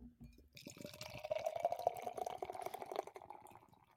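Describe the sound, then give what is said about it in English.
Beer from a freshly opened can pours steadily into a glass with rapid, irregular glugging bursts and a fizzy wash, the tone rising slightly as it fills for about three seconds. No one speaks. “Glug, glug, glug, glug, glug. No, I've been liking trying to get that sound.”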